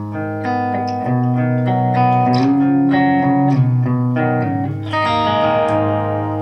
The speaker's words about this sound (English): So you can get kind of quite a good little, you know. So you can clean it up, and it's got that Gretsch resonance that has that chime.